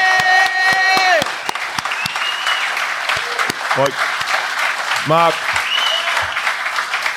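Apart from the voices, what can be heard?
audience applause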